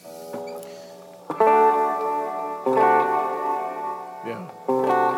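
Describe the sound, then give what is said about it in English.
Electric guitar chords strummed three times through a Polymoon delay pedal, with only the amp's reverb on, each one swelling into a long, washy tail as smeared delays blur together into a reverb-like haze that lingers between strums. “But you can also smear the delays so they become more like a reverb sound.”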